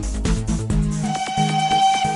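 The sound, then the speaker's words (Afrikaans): The Tini train, a steam train, sounds its whistle in a long, steady, fairly loud blast, with rhythmic puffs of engine chuffing underneath and no one speaking. “Is dit dalk die Tini trein wat ek daar gewaar?”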